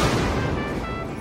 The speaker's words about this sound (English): And what you see as you look away are the robes of the naked man over in the mud to the right. And then you hear the sound of the gunshot.